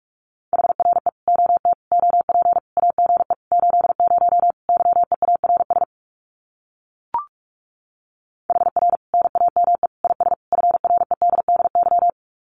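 Fast Morse code at 45 words per minute sending common amateur radio QSO phrases: a single mid-pitched tone keyed in rapid dots and dashes, two long runs separated by a pause with one brief click.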